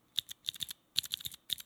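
Sharp clacking of mechanical switches on a computer keyboard pressed in a quick sound test, about a dozen crisp, bright clicks in quick clusters with short pauses between groups, and no voices.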